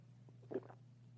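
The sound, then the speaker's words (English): A quiet sip and gulp of water: a short, soft gurgling swallow midway through, over a low steady hum, followed by a sharp little click at the very end. “Excuse me, I'm going to take a sip of water.”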